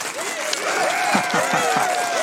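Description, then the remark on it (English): A crowd cheers and whoops over steady applause, with voices rising and falling in excited shouts; the dense clapping holds at a fairly loud level for a couple of seconds. “So, what do I have a cheer? There we go.”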